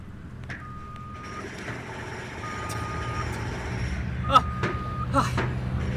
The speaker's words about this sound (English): We've landed here on the construction site on Ellis Island.